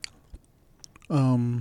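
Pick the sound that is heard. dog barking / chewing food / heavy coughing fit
chewing food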